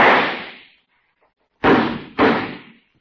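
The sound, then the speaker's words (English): A sharp gunshot, fired once at night, bangs out and fades, then after a short silence two more loud cracking reports follow in quick succession as its echo comes back from the river, each with a decaying tail. No one speaks. “That sound came back so realistically, I could almost feel the bullet go past my face.”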